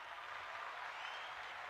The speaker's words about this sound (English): You get some claps.